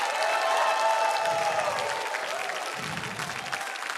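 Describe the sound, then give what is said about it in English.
A church audience claps and shouts praise to God together in a steady, loud wash of applause, with raised voices and cheers riding over the dense clapping throughout. “Give him praise. Give him a shout.”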